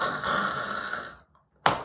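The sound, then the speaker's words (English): A voice mimics a man snoring after falling asleep: one loud, raspy, drawn-out snore lasting just over a second, then a short silence and a brief sharp breathy snort. “Snoring.”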